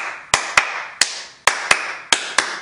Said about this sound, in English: Let's clap our hands.